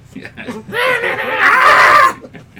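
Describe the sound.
Brief murmured talk gives way to a loud, shrill scream that rises and holds for over a second before cutting off abruptly.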